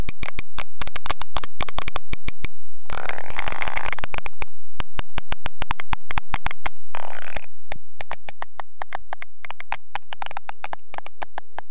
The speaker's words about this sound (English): But those samples of one of their coda types doesn't really give you a good picture of what sperm whale conversations sound like.